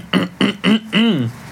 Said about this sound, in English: Clearing my throat there.